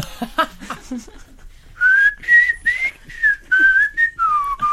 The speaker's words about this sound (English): It's a bit from …. Oh, lovely. I think it was the last whistling hit in the British charts.